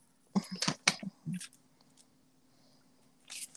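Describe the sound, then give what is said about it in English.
Papers rustle and shuffle as they are being graded, in a quick cluster of crisp, crinkly bursts, then a pause before another soft rustle at the end. No one speaks. “Grading these papers. That's what y'all hear ruffling.”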